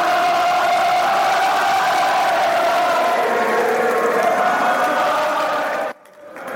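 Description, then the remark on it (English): A large crowd of fans cheers and shouts loudly and continuously, a dense wall of voices, before the noise cuts off abruptly near the end. The fans are cheering the players as they come out after a match and head back to the bus, outside the back of the upper tier of the West Stand. “The players are coming out, heading back to the bus. Practically everybody is here. The fans are all here cheering them.”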